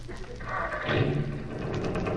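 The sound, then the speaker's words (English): An old, secondhand car's motor sputters and rattles steadily, a rough, uneven mechanical chugging with a low rumble underneath that swells slightly louder midway and keeps running throughout. “Oh, boy, listen to that motor.”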